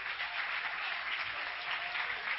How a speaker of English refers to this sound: Clap your hands to the Lord right now.